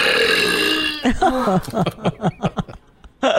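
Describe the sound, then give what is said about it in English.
A woman lets out a loud, drawn-out belch lasting about a second, followed by a string of short, rhythmic bursts of chuckling laughter. “Because I don't know if she's farting or belching.”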